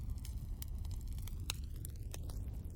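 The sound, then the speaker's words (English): An 8D audio bonfire crackles with irregular sharp pops over a steady low roar, its tone slowly sweeping and shifting as if moving around the listener. “An 8D bonfire.”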